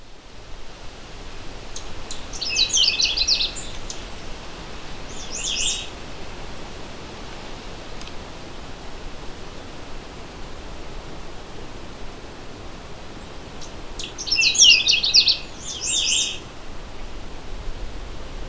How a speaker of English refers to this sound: The Canada Warbler is a colorful, energetic little bird that spends only a few weeks in its territory. It's sometimes called the necklaced warbler due to its black necklace pattern across its yellow chest.